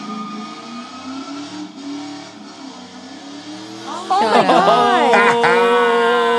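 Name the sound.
car engine revving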